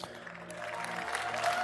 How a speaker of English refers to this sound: Please welcome everybody that's watching online from all over the world. Give them a great hand clap.